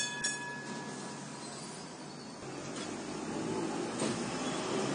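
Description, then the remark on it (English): A tram rattles steadily along the tracks in a continuous rumble, with faint high metallic squeals from the wheels and the noise swelling slightly louder toward the end. “The familiar sound rattled in the darkness and echoed in the ears of Tommy.”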